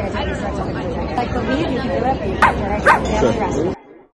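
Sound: dog barking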